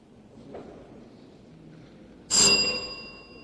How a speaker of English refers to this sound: Has the bell gone?